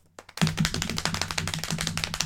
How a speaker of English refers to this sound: I don't want to slap my thighs again. Okay. Can I slap your thighs? Go for it.